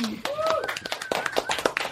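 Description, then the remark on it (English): Thin, scattered applause from a small audience at a radio show: a sparse patter of individual claps with no steady rhythm, joined by a few voices and a brief whistle or whoop. “Sorry, we can applaud. Come on, we can do better than that, people.”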